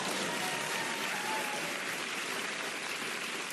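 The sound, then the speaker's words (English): Steady crowd applause fills the whole clip, a dense, even crackle of many hands clapping at constant loudness with no voices over it. “There's so much talk, you can applaud.”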